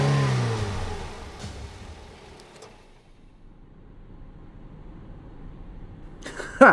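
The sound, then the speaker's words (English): A hearse engine revs loudly, its pitch falling as the vehicle speeds away from a bar and fades into a low rumble, followed by a brief sharp noise at the very end. “No one thankfully came after them as they quietly turned on the engine and streaked away.”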